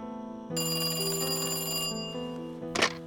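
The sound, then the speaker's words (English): A telephone rings once, a loud metallic bell trill that rings out for over a second and fades, followed by a brief clatter near the end. No voices. “Every time the phone rings, my heart stops, you know?”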